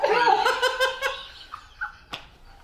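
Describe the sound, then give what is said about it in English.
A person imitates the squawk of the Star Wars character Ban Papiga with a loud, warbling, raspy cry lasting about a second, followed by a couple of short, fainter squeaky yelps and a brief sharp click. “He's like, squawk!”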